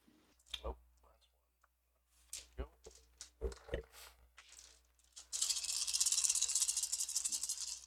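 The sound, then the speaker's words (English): A handful of sharp clicks and knocks, then a sustained, dense rattle of dice being shaken and rolled, fairly loud for the last few seconds. “How many dice that sounds like.”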